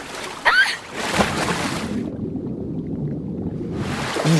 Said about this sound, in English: And then the characters dip underwater and you hear it like glug and it's just, it's wild. It's really cool.